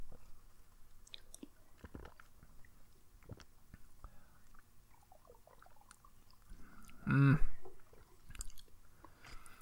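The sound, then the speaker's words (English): Quiet mouth noises and small wet clicks, then one loud, brief slurping sip of a thick milk drink near the end, followed by a few soft swallowing sounds. “Hang on, let me have another sip.”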